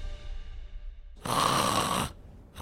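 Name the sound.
voice imitating loud snoring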